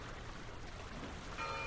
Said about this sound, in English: Stephen Feld set up his microphones there to record the noontime bells from two churches.